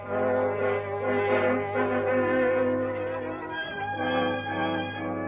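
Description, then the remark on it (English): A southbound freight train whistle sounds in the distance late at night, heard in a railroad cut in the hill country of a New England state: a long, steady, harmonically rich horn blast that holds for several seconds, wavering slightly in pitch, with no voices over it. “It is late at night, and the whistle of a southbound freight is heard in the distance.”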